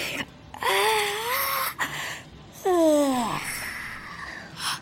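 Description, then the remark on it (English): A person yawns twice: first a drawn-out, wavering voiced groan lasting about a second, then a second yawn that slides downward in pitch and trails off, with no speech. “did you just yawn?”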